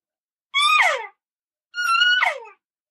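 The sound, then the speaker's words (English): Two short, high-pitched elk locator bugles from a game call, each a strained whistle-like tone that holds briefly, then slides down into a raspy drop, with a pause of silence between them. “And then my next call is going to be just a locator bugle.”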